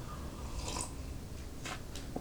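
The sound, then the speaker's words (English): A few soft, wet drips from a device turned about 90 degrees land at irregular intervals against a low background hum, faint, with no one speaking. “So I can get the good drip, and just turned it back the right way, and I think we're onto something here.”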